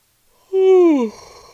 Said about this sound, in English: Sorry, don't mean to yawn.